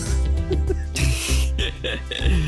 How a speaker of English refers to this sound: I just caught wind that my dog's been snoring her fucking head off the entire time.